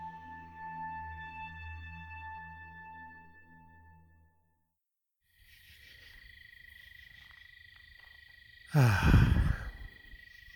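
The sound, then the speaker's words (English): A steady, harmonic humming tone cuts off. After a short silence, a continuous buzzing chorus of night insects and frogs in the woods rises, broken near the end by one loud, rough croaking burst. “I don't know if you can hear that or not through the voice recorder on my phone, but those are all the bugs and frogs and whatever else lives out in the woods out here.”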